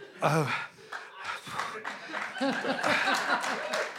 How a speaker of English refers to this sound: It feels like the sort of round of applause you'd give Airplane 2, the sequel.